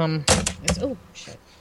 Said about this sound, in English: hit the keyboard. Sorry, guys. I'm sure that was really loud.